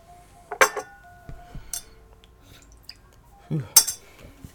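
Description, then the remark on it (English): Glass handling: a few sharp clinks and knocks of a whiskey glass being rinsed, swirled and stirred around, spaced irregularly with quieter rattles and faint sloshing between them, no talking. “Rinse out my glass here.”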